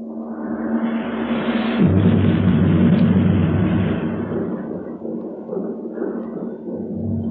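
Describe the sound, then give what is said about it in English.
A deep, rolling rumble of thunder from an approaching storm, heard in a valley, swells to a heavy roar about two seconds in, then slowly subsides into a lingering low growl. No voices are heard. “I declare, I believe there's a storm coming up.”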